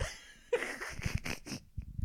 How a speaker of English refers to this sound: Oh my gosh, were you about to sneeze then? No. I just heard a massive inhale.